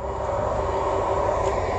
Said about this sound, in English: There's a train.